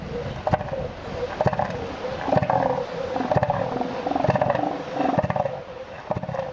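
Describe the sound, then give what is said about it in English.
Deep, throaty animal bellows repeat in rough pulses, a loud guttural roaring typical of an elephant seal vocalization, with no talking over it. “No, it's an elephant seal.”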